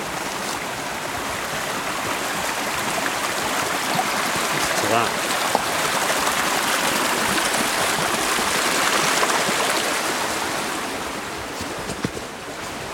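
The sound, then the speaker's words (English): A steady, close rush of flowing stream water fills the whole recording with dense, constant babbling, while a man briefly speaks over it. “I can really hear the stream beside me.”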